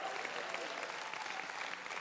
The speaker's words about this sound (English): Shout a big yes and give Jesus a good hand clap.